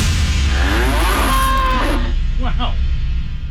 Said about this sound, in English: That was some cow sound. God. A little tweak or two to the cow audio there. Interesting. As a guy who worked in feedlots for many, many years, that particular cow sound got me on my toes. Like, oh. That one's in distress.